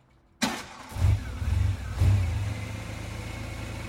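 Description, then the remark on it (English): An old car engine cranks and revs unevenly, sputtering in repeated low surges as if struggling to catch, then settling into a rough, rumbling idle, just outside Waterford. “So Mary and Joseph hopped in their car and headed off to the conference.”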